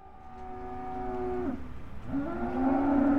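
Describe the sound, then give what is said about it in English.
Cattle moo in long, low, drawn-out calls, one ending around the middle and another rising louder near the end, over a steady background murmur of a busy livestock pen at a stockyard in Hanford, about 40 minutes south of Fresno, California, where a cattle auction is about to begin. “A cattle auction is set to begin at Overland Stockyard in Hanford, about 40 minutes south of Fresno.”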